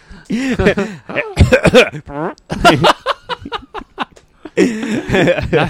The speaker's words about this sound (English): You're trying to make noises just to fill the silence to see if it'll start a conversation. I'm like coughing more.